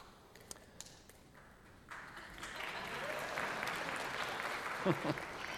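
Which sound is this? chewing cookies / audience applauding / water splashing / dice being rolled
audience applauding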